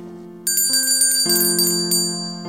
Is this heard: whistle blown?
no